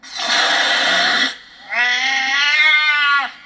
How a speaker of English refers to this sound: Can we put in a cat hiss for that, actually?